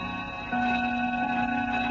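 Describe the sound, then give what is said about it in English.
Clocks ticking steadily against a constant humming background, growing a little louder after the first half-second. No one speaks. “Did you fix the clocks?”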